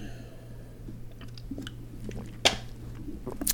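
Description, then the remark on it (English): Someone takes a sip of a drink, with soft wet mouth clicks and one sharper slurp midway, over a steady low electrical hum and no talking. “Bitch, I got to take a sip.”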